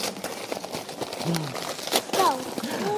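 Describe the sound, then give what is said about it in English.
Gift wrapping paper crinkles and tears in a run of quick, uneven rustling bursts as two children unwrap a layer of baby-themed paper together, revealing gold paper underneath, with children's voices and brief exclamations rising over the noise. “Would you like to unwrap it together? You two unwrap it together.”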